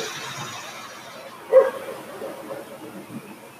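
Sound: dog barking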